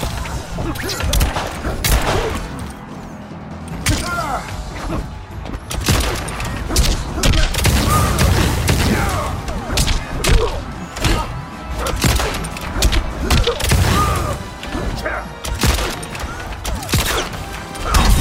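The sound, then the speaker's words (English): Fighting video game combat in Mortal Kombat 11 (MK11) with stereo sound panning, loud and continuous, with rapid thuds, crashing impacts and bursts, short pitched cue tones sounding between hits to signal low health and newly available special traits, and brief vocal grunts mixed in. “Crucial moments in combat are communicated via tones, such as the ones heard moments ago.”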